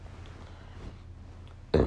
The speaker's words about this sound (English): Excuse me, that was a burp.